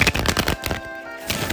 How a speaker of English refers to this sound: Oh man, I miss hearing you shuffle them cards.